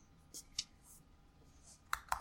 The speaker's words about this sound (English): Furiously typing over there.